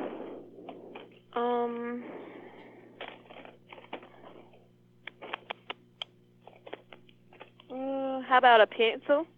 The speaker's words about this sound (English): Okay, let me just file that here in the report here. Just typing that in here into the computer.